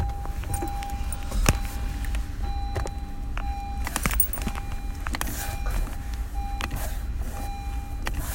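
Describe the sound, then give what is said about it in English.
A car rolls slowly along with its engine off as the driver pushes it with a foot while waiting at a train, giving a steady low rumble and occasional scuffs and clicks, while a repeating electronic beep sounds. No one speaks. “I'm doing the old Fred Flintstone. I'm pushing with my foot.”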